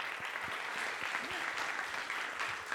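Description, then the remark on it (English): A crowd applauds the panelists at the end of a panel discussion, clapping steadily in a dense, continuous wash of many hands. No single claps stand out, and it holds at an even moderate level throughout. “Can we please give our awesome panelists a round of applause?”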